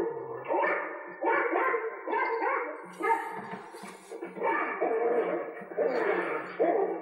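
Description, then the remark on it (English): A dog barks over and over at someone dressed as Santa, in quick, fairly even, loud bursts, with a brief scuffle of noise partway through and no one talking. “I have a bad feeling about this dog.”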